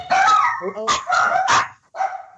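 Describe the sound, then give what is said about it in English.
A dog barks several times in quick, uneven bursts, loud, with a short pause before a final bark. “See, even your dogs think he's even great.”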